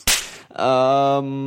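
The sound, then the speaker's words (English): A single sharp whip-crack snaps loudly at the start, then after a brief pause a steady, bright ringing tone holds until the end. No voices. “Slap that fucker.”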